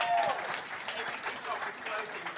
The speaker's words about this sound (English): So round of applause here, yes.